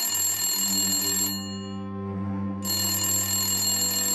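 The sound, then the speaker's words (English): A phone rings loudly in a bedroom on a Friday evening while a man naps, a bright, buzzing bell tone that breaks off briefly in the middle and then starts again, with no voices. “… was in the bedroom taking a quick nap when his phone rang.”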